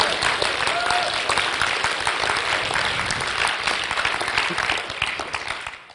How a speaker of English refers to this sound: Man, y'all need to give the Lord a hand clap on that one.